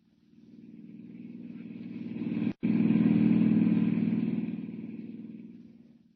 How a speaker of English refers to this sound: Hiring a car, Clark Kent heads out at once on the dusty road to San Miguel, 50 miles away.